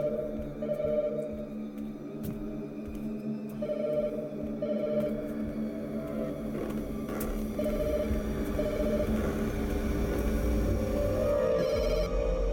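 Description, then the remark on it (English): An old-fashioned telephone bell rings repeatedly over a busy background of music and room noise, steady and fairly loud for the whole stretch. “Oh, remember those phones. Remember the hamburger phone.”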